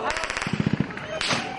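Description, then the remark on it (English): Rapid bursts of automatic gunfire crack out in quick succession in northern Gaza as a group of Palestinians apparently attempted to return to their homes, a dozen or so sharp shots in a tight rhythm, echoing, followed by a brief rush of noise. “CBS News captured automatic gunfire ringing out”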